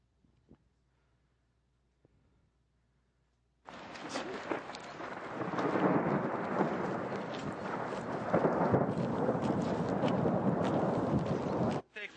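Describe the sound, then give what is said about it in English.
Near-silence, then a sudden loud, dense roar of dime-sized hail pelting down during a thunderstorm, thousands of hard impacts blending into a steady clatter for about eight seconds before it abruptly cuts off. “let's go get in the cistern because we're getting pelted by dime-sized hail.”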